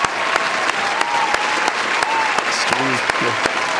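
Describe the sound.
A dense wash of applause from a crowd, steady and fairly loud throughout, with a few faint voiced tones and shouts poking through near the end.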